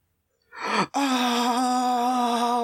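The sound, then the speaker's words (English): A short, breathy gasp gives way to a loud, sustained scream held at a steady, fairly low pitch for nearly two seconds, with no talking around it. “Oh, that scream sounds familiar.”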